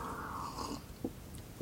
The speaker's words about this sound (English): When you sipped your coffee and you took that pause, his little radio brain had an aneurysm.